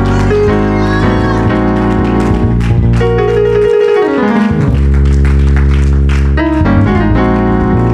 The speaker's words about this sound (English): Come on, give God a clap, pray.